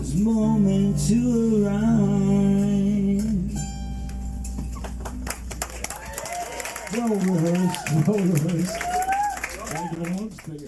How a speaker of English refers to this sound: They're like, is it over finally? I start clapping. This is great.